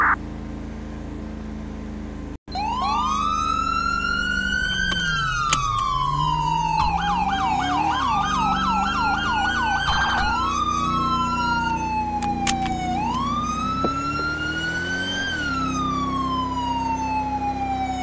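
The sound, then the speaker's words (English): A loud emergency siren wails up and down, briefly switching to a rapid yelping pattern before returning to long sweeping wails over a low engine rumble. “Single siren use for low priority.”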